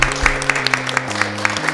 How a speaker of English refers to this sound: and once again, thank you to our live audience here at the Hudson Park Library in Greenwich Village, and we four will applaud you now, but we hope you will applaud yourselves too so everybody can hear. Thank you for coming.